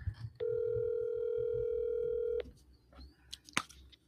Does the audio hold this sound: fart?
no